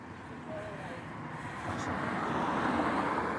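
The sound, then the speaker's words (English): A steady wash of city traffic, a broad continuous roar of passing vehicles that swells slightly louder toward the end, with no distinct voices standing out. “And then if you're like me in the city, you'll hear traffic.”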